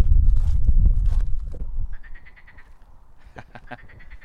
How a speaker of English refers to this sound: That is a marsh frog. Wow, I love that noise. It just makes you think that you're in like the African jungle or something, not Kent.